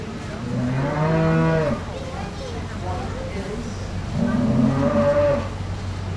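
A cow giving birth lets out two long, strained moos as two workers help pull the calf after breaking the water bag, each moo lasting over a second, separated by a few seconds of quieter background noise.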